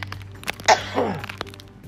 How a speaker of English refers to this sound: Sorry, y'all. But you know, this is raw and real. So if I have to cough, I'm going to cough. And I'm not going to edit it out.